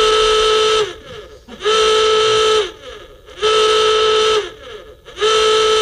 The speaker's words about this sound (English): Okay, we found the alarm. The warning alarm for rap music. When we play rap music on the show, mm-hmm. you're going to hear this alarm, and then you know you can tune out.